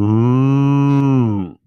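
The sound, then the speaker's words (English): A single loud cow moo, a steady low drawn-out bellow lasting about a second and a half before fading off abruptly, with no talking. “Remember how I said we need the moo?”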